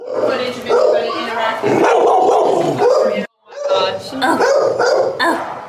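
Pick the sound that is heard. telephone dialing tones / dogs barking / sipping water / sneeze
dogs barking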